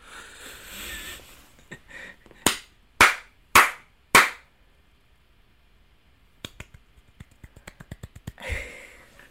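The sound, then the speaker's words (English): Four sharp, evenly spaced hand claps ring out clear, followed after a pause by a quicker run of lighter, softer claps in a pitter-patter rhythm, like polite golf applause. “It was like 4, an audience clap. 4 with a pitty-pat. It was a little like, pitter-patter, golf clap, something like that.”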